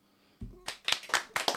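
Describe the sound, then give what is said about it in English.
A short burst of hand clapping, a handful of sharp, bright claps in a loose, uneven rhythm, preceded by a low thump, fairly quiet overall with no voices. “let's give her a clap.”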